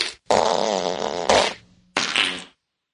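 A loud, drawn-out fart rumbles for over a second, followed by a short burst and then a second sputtering fart after a brief pause, clear with no talking.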